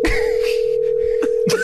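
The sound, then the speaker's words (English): A steady, unbroken phone dialing tone hums loudly through the whole moment, with a few faint clicks and soft rustling noises underneath. “But then let's see what happens when they actually call.”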